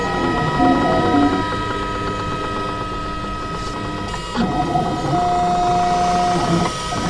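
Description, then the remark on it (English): A 3D printer on a crowded workbench runs, its stepper motors whining in shifting pitched tones over a steady mechanical hum, with brief changes in pitch as the print head moves. “Tape measures, glue, pliers, calipers, circuits, and a 3D printer.”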